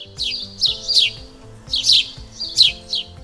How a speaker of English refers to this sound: I gotta tell you, my favorite sound of the spring is birds, the chirping and singing in the morning, in the middle of the day, and sometimes even at night.